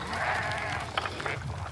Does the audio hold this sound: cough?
no